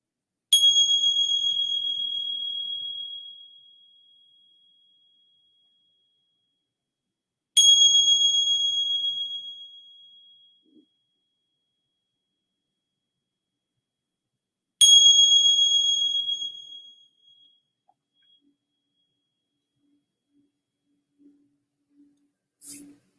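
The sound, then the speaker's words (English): A meditation bell rings three times at slow, even intervals, each strike bright and clear before fading gradually into silence. No voices are heard. “And receiving the sounds of the bell.”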